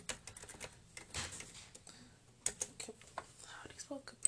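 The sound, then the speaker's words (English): Rapid, irregular clicking of a computer keyboard as someone types a paragraph in caps, with bursts of keystrokes and brief pauses, plus a faint low hum in the background. “Why am I typing in caps?”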